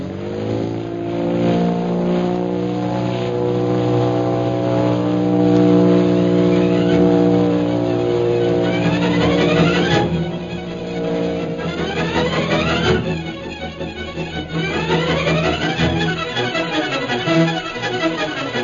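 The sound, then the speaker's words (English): A propeller plane engine drones steadily as the plane circles over the military airport at Calcutta, a thick harmonic hum that wavers and shifts in pitch partway through, with no voices over it. “Several hours later, the plane carrying Shanghai Lil and Jungle Jim circles over the military airport at Calcutta.”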